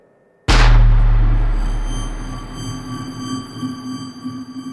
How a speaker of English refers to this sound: But just as I got to my truck door and just as I was about to get in, that's when the first shot rang out.